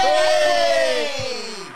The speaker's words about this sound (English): See, the crowd has gone wild. Well done.